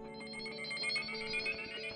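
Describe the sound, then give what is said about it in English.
A smartwatch beeps for an incoming call, a steady electronic ringtone of bright layered tones that carries on without pause for two seconds, with no talking over it. “And then you feel your watch beep.”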